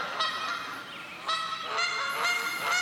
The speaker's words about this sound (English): Geese. Don't you love them? Don't you just love the V formation? You see the V formation?